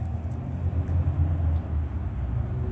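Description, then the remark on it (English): An airplane passes overhead, a steady, deep roar with a broad low rumble that holds at an even loudness throughout. No voices can be heard. “That's three airplanes.”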